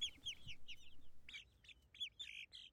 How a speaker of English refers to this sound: And yes, these are their 18 chickens singing in the background.